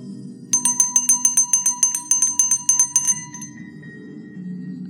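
sound effect, small bell ringing

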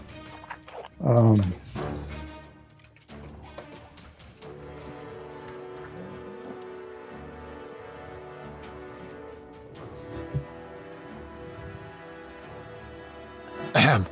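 human body sound, cough and throat clearing

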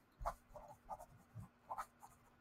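household object, writing notes on paper

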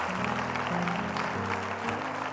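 crowd, audience applause

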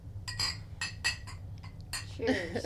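household object, glasses clinking

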